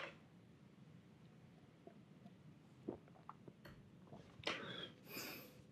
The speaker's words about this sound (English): I need a little sip.